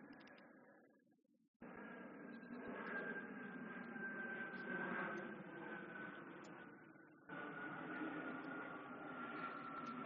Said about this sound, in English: I'm going to miss these plane flyovers. I should savor these moments. These are my last ones.